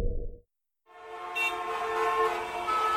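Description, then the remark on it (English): Loud, sustained horns blare over a dense wash of rumbling traffic noise, starting abruptly after a short low thud and a moment of silence, with several overlapping horn tones holding steady. “The traffic!”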